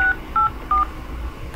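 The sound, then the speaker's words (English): Three short touch-tone keypad beeps dialed in quick succession on a phone call to Wilfrid Laurier University's automated line, each a clear dual-pitched tone, over a low background hum with no talking. “If this is an emergency, please dial 33.”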